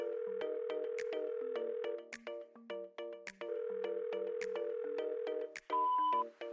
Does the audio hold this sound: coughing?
no